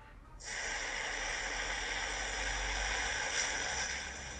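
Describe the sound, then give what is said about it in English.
A steady torch flame hisses continuously after a brief click-like start, a broad rushing roar holding level for several seconds with no voices over it. “I like that torch, dude. Dope torch.”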